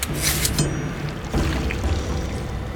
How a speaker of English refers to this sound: Hoori let his blood drip into the water and looked out at the whirlpool.